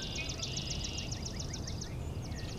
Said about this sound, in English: See, all those ringing ones. Da-da-da-da-da-da-da, that swamp sparrow. All those distant vocalizations are Canada goose.